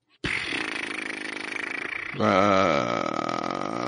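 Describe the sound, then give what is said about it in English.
A deep, rasping elephant seal call, loud and continuous, a rapid pulsing throb that shifts into a louder, more tonal bellow with wavering harmonics partway through. “That sounds like a seal.”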